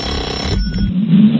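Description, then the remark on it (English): A buzzing electronic alarm sound effect plays on its own to wake someone up, growing steadily louder and more insistent over a second or so, with no one speaking. “what happens if you hit an alarm sound getting effect? Getting louder.”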